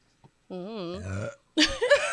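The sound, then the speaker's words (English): A long, drawn-out burp into a fist with a wavering, rumbling tone lasts under a second, followed by a brief burst of voice or laughter. “That wasn't, I hit that burp for you.”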